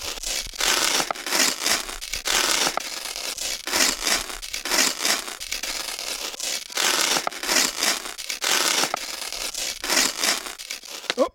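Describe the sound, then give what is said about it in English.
A paper envelope from a postal delivery being torn open, a long series of crisp ripping and crinkling bursts with brief pauses between them, with no voices. “Let me tear open the envelope here.”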